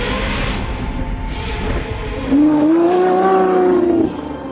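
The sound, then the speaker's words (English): A sports car engine idles with a rough rumble, then revs hard once, its tone climbing and holding loud for about two seconds before dropping back. “And like most people with a sports car, he's keen to show it off.”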